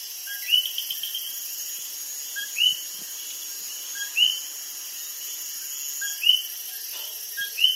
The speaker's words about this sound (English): I recorded these coquis in the mountains of Puerto Rico on a June evening.